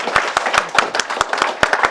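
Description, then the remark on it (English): An audience applauds three speakers at the end of a session, sharp individual claps popping out over a dense, steady wash of many hands clapping at once, loud and sustained throughout. “Let's give them a good applause.”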